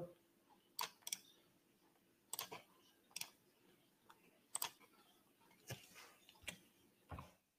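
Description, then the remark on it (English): Someone types on a computer keyboard in quick, uneven bursts of crisp clicks with short pauses between, quiet, against a faint steady background hum and no talking. “I think because you were having trouble with the keyboard.”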